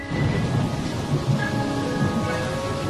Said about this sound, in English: It's raining in Bergen. It usually is.